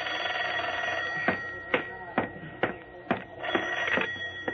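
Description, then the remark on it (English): A telephone rings with a series of sharp, evenly spaced bell strikes over a steady, humming background, moderately loud. “Hello, Jerry Browning speaking. Lieutenant Dawson? Yeah, he's here. Dawson walked over, took the phone.”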